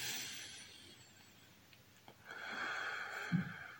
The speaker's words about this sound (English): And a deep breath.